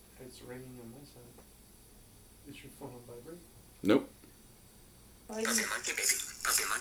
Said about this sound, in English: He wants the ringtone to play, apparently.